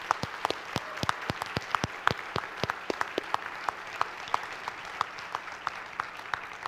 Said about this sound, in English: His term is over here. July 1st is also his first day of freedom, and he served the board very, very tirelessly. He's worked a lot, so can we give him a round of applause for that?